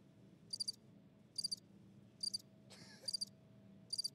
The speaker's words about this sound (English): Crickets?